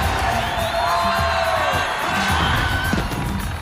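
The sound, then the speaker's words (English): A lively crowd cheers and whoops continuously during the celebration in Return of the Jedi Special Edition, and a sharp, high-pitched Wilhelm scream rises out of the celebratory din before trailing off, with the cheering carrying on throughout. “There's a Wilhelm scream during the celebration?”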